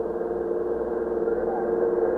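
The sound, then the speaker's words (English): A police car's engine runs steadily, a continuous mid-low hum with a slight rise in loudness toward the end, as the car turns into a block and pulls up to a stop. “When we turned into the block, I noticed that Lieutenant Matt King, commander of the 21st Detective Squad, was in his car making the turn right behind us.”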